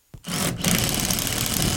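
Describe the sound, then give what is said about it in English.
A power tool cuts a pane of sheet metal out of a new 70,000 BTU natural gas furnace being hooked up in a basement in Pittsburgh's Belts Hoover neighborhood: a loud, harsh buzzing whine that starts abruptly, dips for a split second, then grinds on steadily with a gritty rattle. “In a basement in Pittsburgh's Belts Hoover neighborhood, Gino Ottoviani cuts out a pane of sheet metal from a new gas furnace he's hooking up today.”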